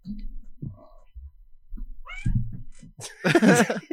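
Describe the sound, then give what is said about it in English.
A cat named Maya lets out a short, high meow, then a loud, drawn-out yowling meow, with faint low murmuring and rustling underneath. “The attack of the cats.”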